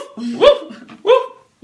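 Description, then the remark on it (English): A person imitates a big dog's bark, giving two loud, throaty woofs about half a second apart before a third begins, with no other talking. “Bark like a dog.”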